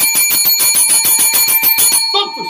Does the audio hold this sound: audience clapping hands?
no